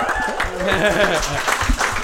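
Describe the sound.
An audience breaks into a steady round of applause for the speaker's friend: dense clapping lasting about two seconds, with voices and a few cheers mixed into the noise.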